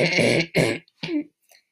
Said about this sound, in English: I hate myself. Why do I have to cough in the middle of the podcast?